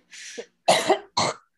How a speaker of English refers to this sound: Pardon me. Like I said, I'm about to go cough up a lung.